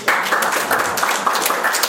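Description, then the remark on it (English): An audience claps and applauds, a dense, steady wash of many overlapping hand claps with crisp crackling transients, sustained at an even loudness for about two seconds with no talking. “Get your hands ready to clap.”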